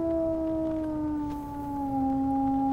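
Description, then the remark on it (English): A voice imitates a wolf howl, holding one long, steady, fairly loud note that sags slightly in pitch and lasts about three seconds, with no talking around it. “Talia shifts into a wolf and lets out her own howl.”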